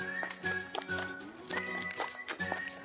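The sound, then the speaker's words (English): Jack, a horse in Eau Claire, with hooves clip-clopping in a steady rhythm over a hard surface, a faint whinny and background music-like tones running underneath. “We'll hear a community member and Jack's owner talk about this special horse.”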